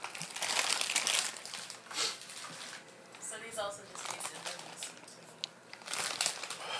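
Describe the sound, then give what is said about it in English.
A bag of salted chips crinkles and rustles in dense, uneven bursts, with a few crunchy crackles mixed in; a voice briefly murmurs partway through. “What kind of chips are these”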